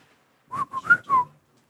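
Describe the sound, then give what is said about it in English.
A person whistles a quick run of four chirpy, warbling bursts, imitating R2-D2's droid beeps. The whistling is moderately loud, with no one talking. “My R2-D2 whistle is apparently not as good as yours, so I'm not going to try that again.”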